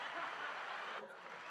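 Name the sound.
soundboard clapping sound effect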